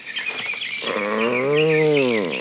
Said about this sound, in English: The sun's almost down. Twilight. Wonderful time to get outside. Cool, sweet air. Wonder what kind of birds those are.